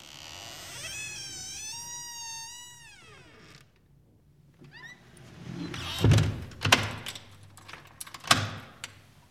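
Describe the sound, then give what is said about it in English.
A door creaks with a long, wavering squeal of its hinges, then swings shut with a solid thud, followed by a few sharp clicks and knocks of the latch, without talk. “Now, please close the door.”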